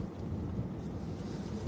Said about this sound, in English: All right, folks, because now the rain is starting again.